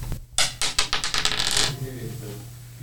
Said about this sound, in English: We're going to roll these dice, and wherever we roll, we get. Dice number one.